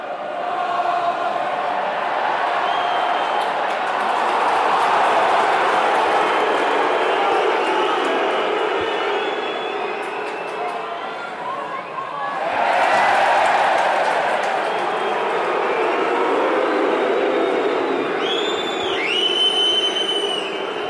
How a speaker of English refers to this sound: Connacht have a penalty in front of the goals. They were trying to run it, that's why the crowd cheered, because they knocked it on, and Connacht have a chance to get into a 9-3 lead.